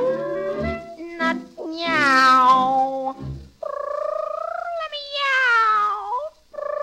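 A cat meows several times in a row, long, drawn-out, wavering cries that rise and fall in pitch, loud, with no talking in between.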